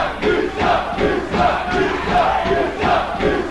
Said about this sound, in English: But they did yell. They did actually yell liar at him, and they called him a traitor, and they heckled him